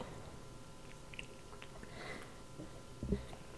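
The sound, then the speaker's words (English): A quiet sip of a warm drink from a glass, with soft slurping mouth noises and a brief louder gulp near the end, no one talking. “Here we go, clink, clink, clink, clink, clink, and now the sip.”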